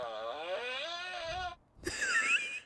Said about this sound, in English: These are farts around the world.